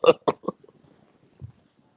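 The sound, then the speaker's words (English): A cat farts: a quick run of short, sputtering bodily bursts, three close together, then a single lower, muffled puff after a pause, moderately loud with no talking. “My fucking cat keeps farting next to me, dude.”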